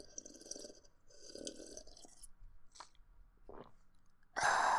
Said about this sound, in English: I'm going to end this mid-roll with another sip of my water.